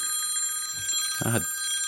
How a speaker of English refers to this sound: Dadgummit. Hang on a second. Let me get this phone call.